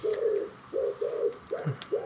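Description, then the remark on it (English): A pigeon coos close to the window of a house, a series of soft, throaty low hoots repeating in a steady rhythm, fairly loud, with no voices. “Is that pigeon at your house or my house?”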